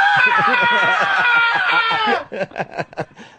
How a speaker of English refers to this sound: Scream again